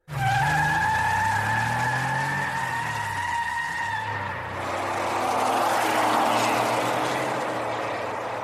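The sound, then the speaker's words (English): Tires screech in long, high squeals as cars rev and peel away, engines roaring loud, with a dense rush of skidding noise building toward the end. “And before he could reach them, they were gone, jumping into their cars and speeding off like they'd just robbed a bank.”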